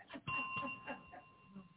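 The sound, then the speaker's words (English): A bell rings with a steady, sustained ding that holds its pitch through most of the moment, fairly quiet, with faint murmuring voices underneath. “If you can't do anything else, hit the bell.”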